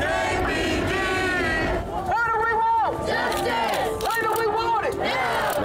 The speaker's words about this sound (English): Downtown Knoxville, Tennessee, where there are dozens of people protesting. They are demanding justice after the death of Anthony Thompson Jr. by police.